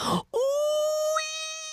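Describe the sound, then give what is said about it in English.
A short harsh burst, then a single sustained, anguished woman's scream held at a steady, piercing pitch for over a second, loud throughout and fading slightly at the end. “The screams have now rent the air, a long, tortured cry.”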